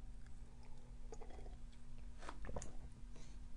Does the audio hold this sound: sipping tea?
yes